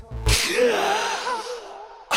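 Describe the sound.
A person imitates the gasp heard in a song: a sharp, breathy intake that stretches into a long, airy, slightly voiced breath lasting about two seconds, fairly loud, with no speech.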